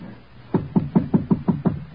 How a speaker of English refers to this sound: I walked down the hall toward the flat. The flat where those two kids waited behind the door that they thought would keep the terror and death away from them. Then? Knock.